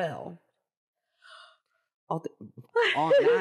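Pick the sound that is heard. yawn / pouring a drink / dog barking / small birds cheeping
yawn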